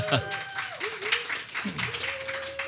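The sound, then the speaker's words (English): An audience claps steadily in a dense, crackling burst of applause, with a few drawn-out cheering voices rising and falling over the clapping throughout. “So let's hear it for”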